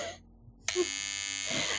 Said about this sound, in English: And they hit them with like a hand buzzer.